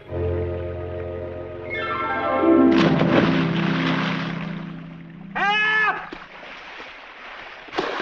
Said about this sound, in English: Before he jumps to his death, an odd elderly stranger, the guardian angel Clarence, hurtles himself into the swirling icy water.